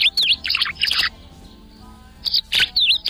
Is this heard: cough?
no